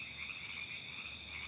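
A steady, unbroken chorus of frogs croaking and trilling, high and buzzy, continuing evenly without pause at a moderate level, with no voices present.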